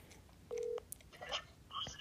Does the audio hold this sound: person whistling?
no